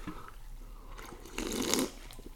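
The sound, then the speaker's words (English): A wet slurp as someone takes a quick sip of a Monster energy drink from a can early in the morning, one short gulp rising out of near silence and fading within about half a second. “We got the monsters unlock early in the morning. So get a crack. Oh yeah, it's good. Cheers to the first episode,”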